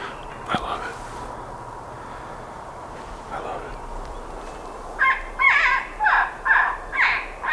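An electronic predator call imitating a porcupine, used to try to call in a mountain lion: about five loud, nasal, whining squeals in a steady rhythm, rising out of a quiet background hiss near the end.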